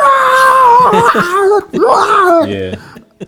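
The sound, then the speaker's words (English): A voice imitates a man screaming, as heard in the background of a phone call from someone in a big house, letting out two long, wavering wails with a brief break between them. The cries are loud and sustained, sliding in pitch before trailing off into a steadier tone. “I don't know where this dude is at screaming like”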